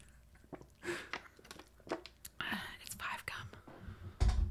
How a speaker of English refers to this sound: Did you steal my gum again? Well, whose gum you think I thought I was chewing this whole time? I thought you had your own gum.